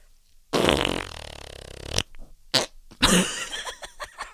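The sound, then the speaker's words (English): A loud, long, buzzing fart noise made with the hands, followed by a few shorter sputtering bursts and a final rattly blast, without any talking. “Here's a couple, like, here's the farts that we encounter in our lives via ourselves or others.”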